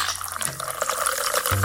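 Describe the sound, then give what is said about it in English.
Three ounces of tonic water pour steadily into a tall glass filled with ice and cranberry juice, a continuous fizzy splashing with bright bubbling texture and a low hum underneath, no voices. “Then, pour 3 ounces of tonic. So bubbly.”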